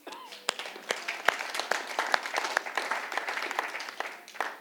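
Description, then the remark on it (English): A church audience applauds together, giving God a clap, a dense patter of many hands clapping with a few sharp, louder claps standing out, sustained for several seconds before tapering slightly. “Let's give God a clap.”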